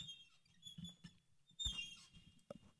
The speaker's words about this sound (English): You and boy, this makes a lot of noise. Listen. Squeak. We need some of that WD-40 you talked about earlier.